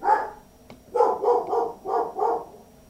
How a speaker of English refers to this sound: Oh, shut up, dogs.